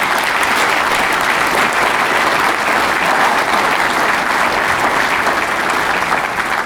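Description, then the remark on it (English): Sustained audience applause for a community fundraising total, a dense, steady wash of many hands clapping at once with no pauses and no voices standing out. “Yes, clap for that.”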